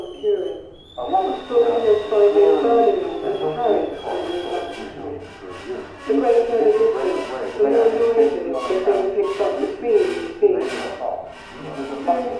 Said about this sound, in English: And there's an illustration of some coils inside and a receiver. When it's on, it doesn't play the sound so much as it creates an entirely different sound. The rattling of the kettle almost stands out above everything else.